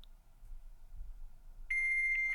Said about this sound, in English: Oh, it's someone's fax machine. We were so close, dude.